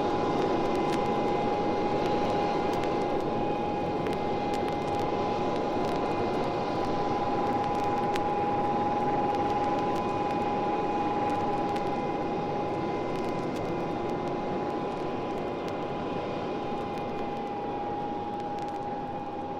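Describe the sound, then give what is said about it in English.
A VC10 jet airliner's Conway low-bypass engines roar steadily and loudly for the whole stretch, a dense rushing noise with a piercing high whine running through it, unbroken, with no voices. “There is a very unique sound, wasn't it, those Conway engines.”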